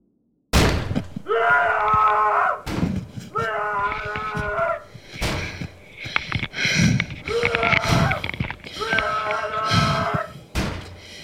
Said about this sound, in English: It is 2:37 in the morning. I'm in my hotel room and woke up to someone banging on the door and shouting my name. I am recording this in case something happens.